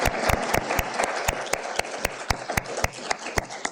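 An audience at a law school panel applauds a panelist being introduced. The applause is a dense wash of clapping, with sharp individual claps cutting through at a quick, even rhythm. It stays fairly loud throughout, with no voices.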